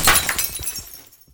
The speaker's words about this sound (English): You probably heard some glass shattering.